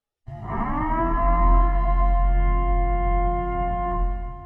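A loud siren winds up and then holds a steady, droning wail over a deep rumble. It sounds close and continues unbroken for several seconds, with no one talking.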